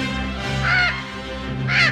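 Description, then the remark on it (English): A parrot lets out two loud, harsh squawks about a second apart, each short and raspy, over a steady low background hum. “Welcome to World Parrot Day.”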